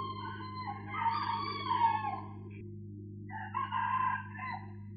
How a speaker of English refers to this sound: The roosters are crowing, which is a sign that it's time to wake up.